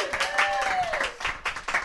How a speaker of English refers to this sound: Happy fourth, though. Thank you. Round of applause for the fourth birthday of...